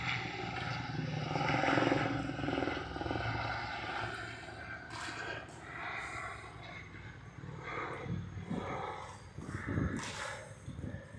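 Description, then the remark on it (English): A helicopter drones steadily overhead with a broad rotor rumble that swells and slowly fades, joined by a few brief sharper noises later on. “And a helicopter.”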